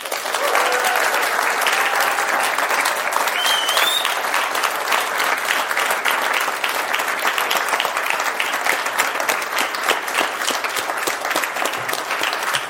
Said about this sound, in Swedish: Och här för att göra det är dess programledare Ann Heberlein. Stor applåd!